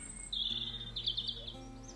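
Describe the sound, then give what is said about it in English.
Soft pre-dawn birdsong from robins, blackbirds, blue tits and starlings: high, thin trills and chirps, with a low steady hum underneath and no voices. “Robins and blackbirds, blue tits and starlings, all piping softly in the pre-dawn”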